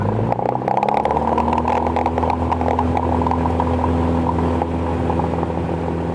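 A seaplane engine revs for takeoff: a loud, steady droning roar with a low humming tone that rises in pitch in the first second, then holds, with rattly clatter throughout and no voices.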